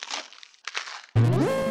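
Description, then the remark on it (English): Two crunchy bursts of biting and chewing into a turkey leg found on the ground, followed abruptly by a loud, bright, rising tonal jingle that rings to the end. “Ugh, you're eating a turkey leg from the ground?”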